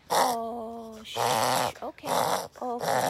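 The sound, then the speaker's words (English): A small, excited female dog lets out a high, wavering whine, then a series of rough, breathy growling grunts in three close bursts, fairly loud, with no one talking. “And I'm gonna pick up my wonderful doggy here. She's breathing.”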